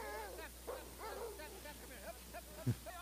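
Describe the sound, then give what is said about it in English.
Sled dogs bark and yip, several voices overlapping in a restless, continuous chorus, with one sharper, louder call near the end. “He's listening to the dogs, see his eyes. He's listening to what's going on when we're filming him.”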